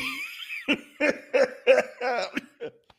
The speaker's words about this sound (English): God, I got this cough. I cannot shake. I'm sorry.